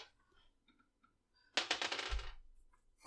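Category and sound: dice being rolled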